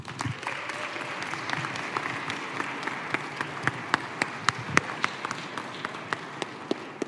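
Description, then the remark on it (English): An audience applauds steadily for several seconds as a speaker introduced as C.S. Lewis is welcomed to the stage, a dense wash of overlapping claps with a few sharper individual claps cracking above the rest. Nobody speaks. “Thank you, ladies and gentlemen, for that kind applause.”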